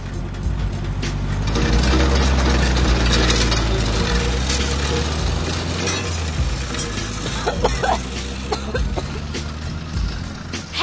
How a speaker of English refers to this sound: Dein Auspuff ist kaputt.